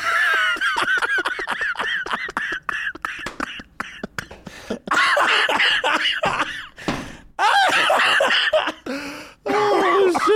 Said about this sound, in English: Oh, that made me cough.